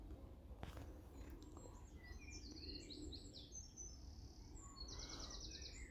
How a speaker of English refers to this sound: So in the woods, you can probably hear all the chatter of the birds. Very relaxing.